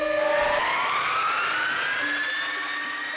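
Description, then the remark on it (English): A large cargo aircraft, big enough to fit six Apache helicopters inside, has engines that scream loudly and continuously. Their piercing whine slides steadily upward in pitch over a broad, rushing roar, with no voices present. “Most people would describe it as a screaming sound.”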